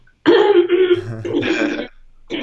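coughing and throat clearing

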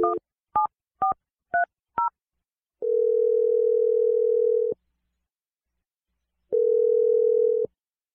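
phone ringing

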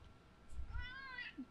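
cat meowing

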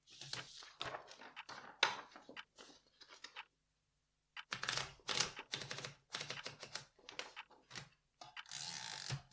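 typewriter typing

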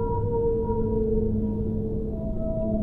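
whale vocalizations

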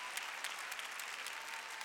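audience clapping hands

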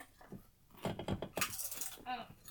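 crunching on potato crisps

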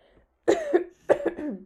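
cough

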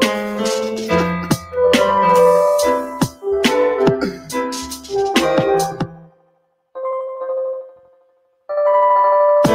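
bells

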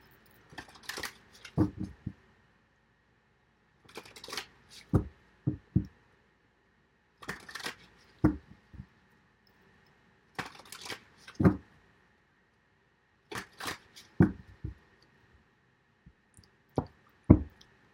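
shuffling tarot cards

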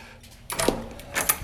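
keys jangling

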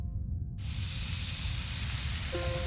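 onions sizzling

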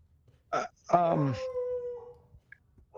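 dog howling and whimpering

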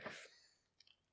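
sneeze

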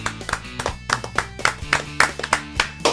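hands clapping

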